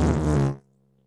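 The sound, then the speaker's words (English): A loud, wet fart blasts for about half a second, buzzy and sputtering, then cuts off into near silence with only a faint low hum trailing. “That was a loud, wet fart, and I've tried to get into it.”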